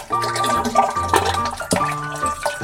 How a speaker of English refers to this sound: You see, Courtesy Flush covers them all. The wet splash.